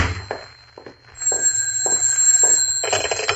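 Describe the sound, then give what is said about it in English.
A telephone rings with a bright, shrill tone that starts after a brief pause and keeps going in rapid repeated pulses, fairly loud, with no one speaking. “Oh, and there's my phone.”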